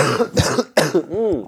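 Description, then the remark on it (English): A person coughs twice in quick succession, then clears their throat with a brief rising, voiced rasp. “I have to cough.”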